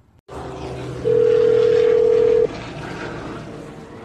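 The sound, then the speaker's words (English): A single loud, steady telephone ring tone sounds for about a second and a half over a low background hum, as a long-distance call from Egypt rings through to the Santa Barbara Zoo in California. No one speaks. “I'm going to call a zoo in California, and I'm gonna ask them if they'd be interested in some of these animals.”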